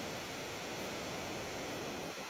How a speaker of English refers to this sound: Oh, I can't hear it. You can't hear it. You can't hear it? No, it's all static.